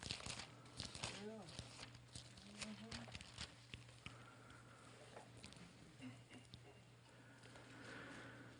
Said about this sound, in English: I'll wait just a moment, I hear pages rustling.